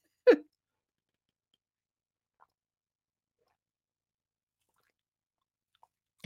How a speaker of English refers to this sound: I'm going to have a sip of drink while Robert retypes his question in